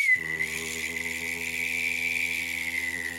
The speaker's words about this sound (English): Oh! I'm both whistling and humming at the same time. Yeah, you sound like a didgeridoo. Thank you. Yeah, that is quite amazing. It sounds a lot like something's going to malfunction and explode.